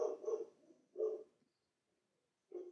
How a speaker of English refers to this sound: Why is the dog barking like that? He barks at everything.